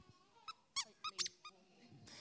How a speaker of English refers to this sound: So we're going to need one person from each team to be the buzzer. So you're going to have to, when your team indicates to you that they know the answer, you're going to have to stand up and squeak this buzzer.